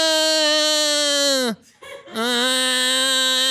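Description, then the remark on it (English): A person imitates the call of a camel they played as in a video game, with two long, loud, buzzy groans separated by a brief pause, the first sliding downward in pitch before breaking off. “However, I did play as a camel recently, and they make a sound that's kind of like.”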